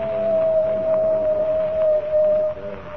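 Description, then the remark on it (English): A single long coyote howl holds one steady, drawn-out pitch for a couple of seconds before cutting off, clear and fairly loud over a low, rumbling background. “The coyote has howled three times.”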